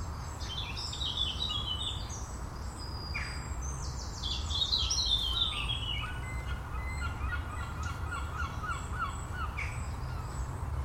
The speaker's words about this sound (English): Blackcap wren. A little family of wrens are squeaking away.